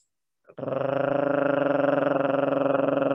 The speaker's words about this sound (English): And you'd breathe in your nose and then you'd gargle.